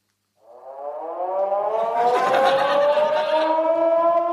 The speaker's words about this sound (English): Oh my gosh! The siren was getting louder and louder.